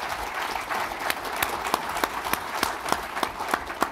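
A crowd applauds steadily for about four seconds, a dense wash of many hands clapping with a few sharper, louder claps popping out irregularly above the sustained patter.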